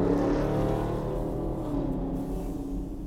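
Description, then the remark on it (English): A Dodge Charger's exhaust roars loudly on Passyunk Avenue, a deep, throaty rumble that rises as the car speeds up, driving fast, then eases slightly as it moves past. No one speaks. “Can you guess that car by the sound of his exhaust? It's a Dodge Charger.”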